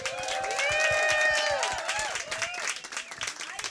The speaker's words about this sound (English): Please welcome, with a big round of applause